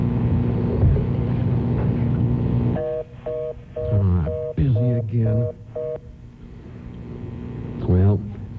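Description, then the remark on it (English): A local call is dialed on a coin payphone in a train station on Christmas Eve: a quick series of about seven bright, clear push-button tones, with muffled voice-like sounds between them over a steady low rumble. “A local call will take just a nickel.”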